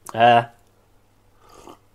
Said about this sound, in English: Sorry about the slurping.